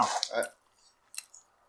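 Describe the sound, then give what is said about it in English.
Someone chews a sandwich with wet, squishy mouth noises: a loud burst of chewing, a short pause, then a few fainter smacking bites. “Once you hear those chewing sounds... Delicious.”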